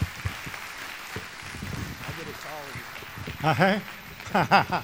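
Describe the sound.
A crowd applauds steadily for several seconds for a speaker invited up to give the morning's message, a dense crackle of clapping, while voices call out and cheer over it, growing louder near the end.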